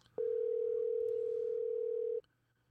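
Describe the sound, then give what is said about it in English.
A single loud ringback tone from a phone call, one steady electronic hum lasting about two seconds before cutting off into quiet, with no one talking. “It's ringing right away. We'll see if she answers.”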